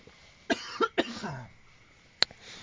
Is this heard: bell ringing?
no